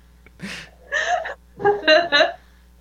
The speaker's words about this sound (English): It's just, I'm sorry, I'm just yawning and stretching,